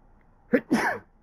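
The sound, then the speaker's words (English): A single sneeze: a short sharp intake-like burst followed by a louder, breathy explosive release, about half a second long, with quiet background tone around it. “Excuse me. Bless you.”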